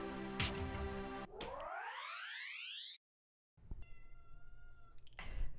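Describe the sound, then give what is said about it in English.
A single drawn-out kitten meow, fairly clear, comes after a rising electronic sweep and a brief silence, with a faint hiss in the background. “I don't know if you heard that. That was a kitten meowing.”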